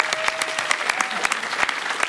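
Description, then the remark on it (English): An audience claps steadily for the guests of a show, a dense stream of overlapping hand claps with sharper individual claps popping out. No one speaks over it. “Ladies and gentlemen, a round of applause, please, for our lovely guests”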